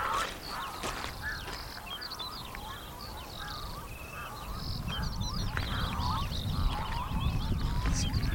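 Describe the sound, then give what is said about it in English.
A busy chorus of unusual bird calls, many overlapping chirps, squawks and honking cries, over a steady low rumble of wind or surf that grows stronger toward the end. “Strange calls. Birds that I'm not familiar with.”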